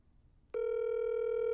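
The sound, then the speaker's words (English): A phone call rings out over speakerphone: after a brief quiet moment, a steady electronic tone kicks in and holds at an even, fairly loud level, with no voices over it. “Let's see if she answers. I bet she doesn't answer.”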